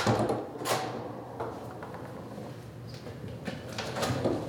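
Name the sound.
locked door being opened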